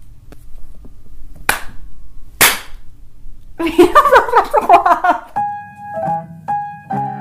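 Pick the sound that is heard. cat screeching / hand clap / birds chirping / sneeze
hand clap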